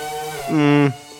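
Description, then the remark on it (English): A synthetic car engine sound: a buzzy, strongly tonal hum that rises in pitch and swells louder, holds steady briefly, then drops away, with a fainter steady drone before it. “Would you like to hear these fake engine sounds?”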